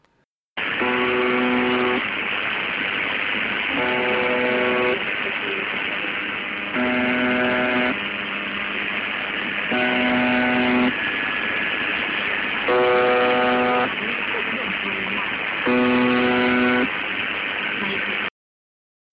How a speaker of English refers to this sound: And lastly, we get to the transmission known as UVB-76 or the buzzer. And this is that transmission.